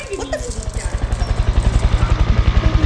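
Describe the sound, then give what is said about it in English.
A helicopter approaches, its rotor beating in a rapid, steady low thump that grows steadily louder over the three seconds, with a brief voice audible near the start. “What's that sound? It looks like a chopper.”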